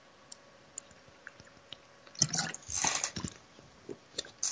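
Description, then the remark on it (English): Quiet mouth sounds: a few faint clicks, then a short burst of slurping as someone takes a sip of water, followed by a swallow and more soft clicks. No one speaks. “Please excuse me, I'm just going to have a sip of water.”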